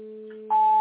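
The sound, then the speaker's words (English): A steady electronic tone hums for about half a second, then jumps abruptly to a louder, higher-pitched beep with a buzzy edge, part of a sequence of eight electronic tones. The two tones come in quick succession, clear, with no voices. “That might be the eight tones.”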